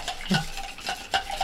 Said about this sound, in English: All right, so give this a little stirry-poo.